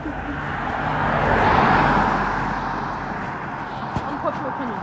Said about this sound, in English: Wait for the car to go.